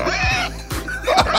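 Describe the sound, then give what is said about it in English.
A pig grunts and oinks in short, snorting bursts, about three grunts over a second or so, mixed with higher squealing noises and a noisy background. “No, what's weird is me and Jared's friendship's on a ledge right now because I thought I was the only one getting pig videos.”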